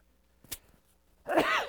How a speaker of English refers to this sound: And I'm going to sneeze. I think that's the first time I've ever sneezed in the middle of a message before.